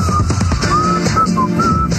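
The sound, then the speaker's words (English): A man whistles a wavering tune along with loud, dense music during a live broadcast from Footprint Center, his thin sustained notes gliding up and down over the busy instrumental backing. “Don't adjust your radio. That's … whistling along.”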